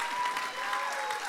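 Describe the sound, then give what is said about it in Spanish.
An audience claps loudly and steadily for the Lord, dense overlapping applause filling the whole short stretch with a bright, crackling wash of hand claps and no voices standing out. “Bueno, entonces, aplauso fuerte al Señor.”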